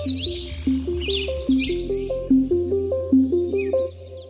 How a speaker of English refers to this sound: I remember going for a bike ride right after the beginning of the lockdown and just marveling with a friend at how much you could hear. There's birds everywhere. The city is just filled with the sound of birds now.